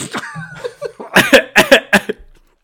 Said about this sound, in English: Sorry. Just cough on the mic.